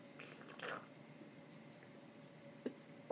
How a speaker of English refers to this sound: I don't know if you guys heard that, but that was me sipping my tea.